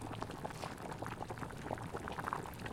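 A pot of soup broth boils steadily, with dense, continuous bubbling and frequent small pops, no voices over it, while soup stock is being added.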